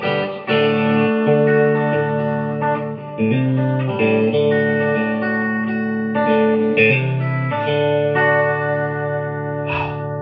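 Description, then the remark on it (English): A clean electric guitar rings through an amplifier with its reverb set at three, in sustained chords with a moderate reverb tail, played steadily and fairly loud, with no talking. “This though is right there at three. That's all the reverb I want out of that thing, really.”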